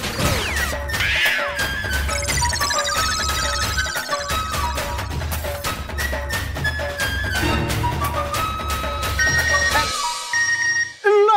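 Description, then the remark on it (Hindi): A phone message notification tone, signalling a message from an investor, plays as a bright, busy electronic melody of chiming tones over a steady low beat, loud, ending with a brief rising chirp. No one speaks. “देखो इन्वेस्टर का मैसेज भी आ गया।”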